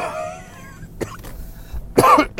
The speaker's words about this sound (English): I hope you enjoyed my cough-filled podcast.